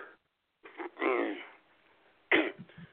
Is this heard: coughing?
yes